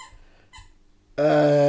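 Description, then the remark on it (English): A dog squeaks its pink alien squeaky toy twice briefly and faintly, then lets out a loud, sustained, high-pitched squeal that runs to the end. No one speaks. “By the way, we can hear the dog squeaking in the background.”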